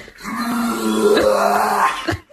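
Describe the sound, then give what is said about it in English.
A dog makes one long, raspy gagging sound lasting about two seconds, a hoarse wheezing croak with a steady low tone, like a heavy smoker's hacking groan. “Is this a woman laughing at her husband gagging like an old chain smoker, her pet pig gagging like an old chain smoker, or her dog gagging like an old chain smoker?”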